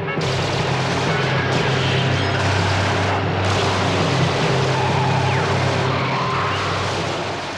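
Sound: machine gun fire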